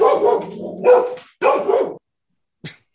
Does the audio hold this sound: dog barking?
yes